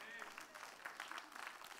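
A brief, soft round of audience clapping, a dense patter of many hands that holds steady for under two seconds with no clear words over it.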